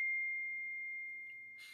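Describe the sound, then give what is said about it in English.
A single clear electronic ding from a phone notification rings out as a steady, bright tone that slowly fades over about a second and a half, heard alone at moderate volume before a brief rustle. “My phone just went off.”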